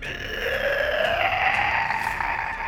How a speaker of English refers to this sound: The beast turns its fearful gaze on the God of Thunder. And growls a horrid growl.